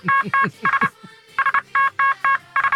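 A run of Morse code beeps sent as messages on the My Talk morning radio show: bright electronic tones in short and slightly longer bursts, grouped in quick rhythmic clusters with brief gaps, fairly loud over a low, murmuring background.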